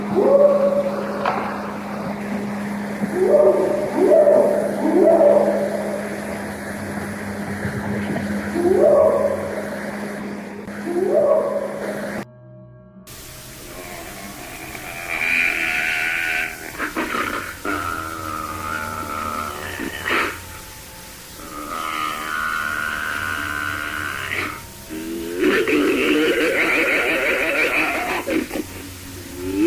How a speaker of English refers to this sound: I heard a scream and howls and growls similar to what I have heard on parts 2 and 3 of the Sierra tapes